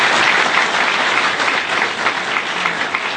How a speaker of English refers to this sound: If you're a visitor here this morning in Grace Christian Church, we love having visitors. And we want to give you this warm round of applause to make you feel welcome.